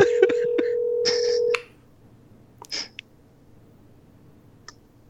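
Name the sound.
phone call being dialed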